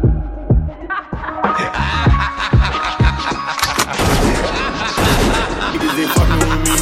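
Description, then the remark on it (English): Gunshot sound effects crack through a loud, busy music track, with several sharp bursts landing at irregular points amid the dense beat. “I'ma pull a trigger, I won't think twice.”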